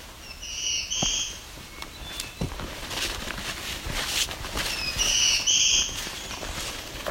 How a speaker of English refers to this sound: That's black-throated blue warbler. Flown over my head. It's the second one joining him. Both males.